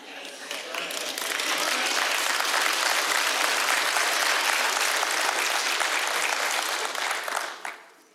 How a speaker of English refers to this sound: This is not a political sermon, okay? I knew you were going to clap at that, and that's the way I feel, but this is not about politics.